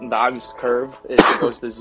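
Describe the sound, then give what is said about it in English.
A single sharp, explosive sneeze bursts out in the middle of a man's steady talking, loud and brief, and the speech carries on right after it. “Bless you.”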